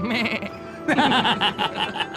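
A goat bleats loudly in two wavering, quavering bursts, the second rising sharper and more insistent, with no talking around it.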